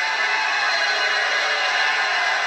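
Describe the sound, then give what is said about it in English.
A crowd of about 500 people screams and cheers nonstop during interviews, a loud, dense wall of high-pitched voices that holds steady for the whole stretch with no individual speech standing out. “We're just going to listen to the crowd screaming.”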